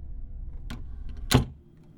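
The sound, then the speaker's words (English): A door is eased shut softly by a man: a light click, then a firmer but still gentle thud as it meets the frame, over a low steady background rumble. No one speaks. “He eased me on out the door, looking at me across a vast, sad distance as he closed it, softly in my face.”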